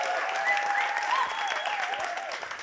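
A large crowd applauds steadily, dense clapping filling the space, with faint cheers and whistles rising above the sustained wash of hands.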